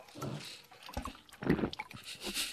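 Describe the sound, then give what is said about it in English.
Someone slurps coffee in a few wet, noisy sips, the loudest burst in the middle, followed by softer sucking sounds. No one speaks. “That was coffee.”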